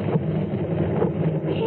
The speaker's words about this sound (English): Hey, here comes a car.